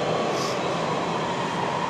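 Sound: metro subway train running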